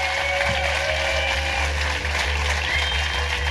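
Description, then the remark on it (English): An audience applauds guest Jamie Dimitriou steadily, a dense, loud wash of clapping that continues unbroken for the whole few seconds with no voices over it. “Ladies and gentlemen, give a massive round of applause to the amazing Jamie Dimitriou.”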